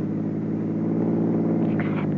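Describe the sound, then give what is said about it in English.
The engine of a chauffeur-driven car rumbles steadily near midnight on a drive to Madrid, a continuous low droning hum with a faint higher whine near the end, no voices over it. “Except, I still would have felt safer by plane than by car.”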